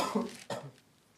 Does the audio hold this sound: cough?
yes